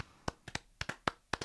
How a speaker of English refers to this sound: I feel like I want to give a round of applause. I want to give a round of applause to Blues TV.